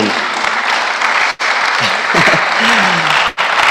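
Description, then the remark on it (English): A church audience claps loudly and steadily for Jesus after a Bible reading, a dense wash of hands broken by two brief pauses, with a few voices calling out underneath. “Oh, give a clap of room to Jesus.”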